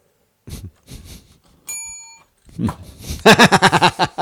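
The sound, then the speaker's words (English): A single soft bell rings once with a clear, bright, lingering tone, set between short vocal bursts and followed by a rapid string of loud, dog-like barks. “The quietest bell.”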